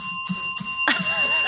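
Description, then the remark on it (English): A concierge desk bell is struck several times in quick succession, each bright metallic ding layering over a sustained ringing tone that hangs in the air. Fairly loud, with no talking. “The kind that goes ding." and they were like, the concierge bell.”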